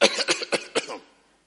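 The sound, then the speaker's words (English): A quick fit of dry coughing, about five sharp, hacking bursts packed into one second, fairly loud, then trailing off into silence. No talking. “That cough. Dry.”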